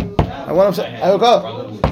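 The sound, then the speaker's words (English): Two sharp knocks on a door about a second and a half apart, with a voiced, wordless vocal sound filling the gap between them. “The broker's knocking on the door.”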